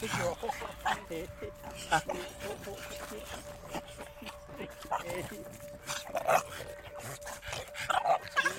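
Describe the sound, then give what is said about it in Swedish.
Several dogs bark and whimper excitedly as they greet visitors, with short yips and bursts recurring throughout, while people talk over the commotion and a steady faint tone hums underneath. “Vi möter upp kvinnan en bit bort därifrån hon bor för att hundarna ska få tid att hälsa.”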